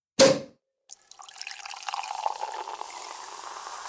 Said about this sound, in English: we'll just pour a couple of glasses of champagne